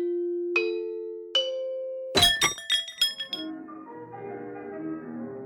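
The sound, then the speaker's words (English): Two clear, sustained bell tones ring out, followed by a quick burst of bright, clanging strikes that fade into a lingering, shimmering ring. No one speaks. “I'm Jenny Johnson, and I'm a bell enthusiast.”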